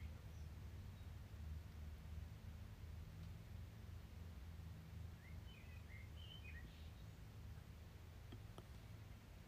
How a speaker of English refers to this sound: Cue the bird sounds.